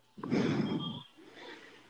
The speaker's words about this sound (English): Is what we're hearing you panting from standing up?